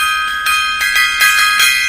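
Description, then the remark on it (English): A gong is struck several times in quick succession, its bright metallic ring sustaining steadily between hits, fairly loud with no voices. “Gong time.”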